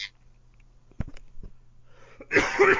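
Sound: cough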